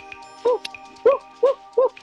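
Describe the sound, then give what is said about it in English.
A dog barks four times in a quick, fairly even rhythm, each bark short and clear at moderate loudness, with a faint steady hum underneath and no talking. “My dog is getting worse.”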